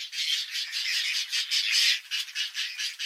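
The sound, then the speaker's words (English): Harsh, rasping whiskered tern calls repeat in a rapid, nearly continuous series of scratchy squawks, loud, with several birds seemingly overlapping and no other sounds. “Male whiskered terns gather food for their mates, but things don't always go as planned.”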